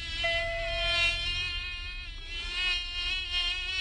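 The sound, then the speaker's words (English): A steady, high-pitched whine of many mosquitoes buzzing, continuous and swelling slightly in loudness, with no voices present. “Welcome to Mosquito Heaven.”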